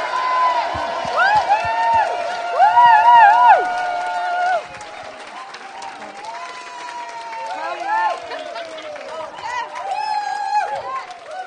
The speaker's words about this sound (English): We're just cheering you on. So why don't we give each other and Jesus another cheer? Ready? 1, 2, 3. Yeah!